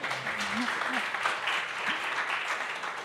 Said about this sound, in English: And he's like reading it, making sure that he deserves a round of applause.